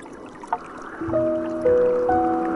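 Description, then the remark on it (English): A steady, gentle rush of flowing stream water runs throughout, with soft sustained piano notes entering after the first second and layering over the watery wash. “Soothing Piano and Water Stream”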